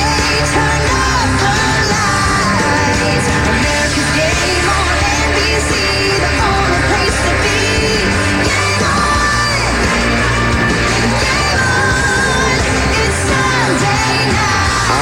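A football broadcast theme song plays loudly and continuously, a dense, driving rock-style track with belted vocals over heavy guitars and drums for the full fifteen seconds.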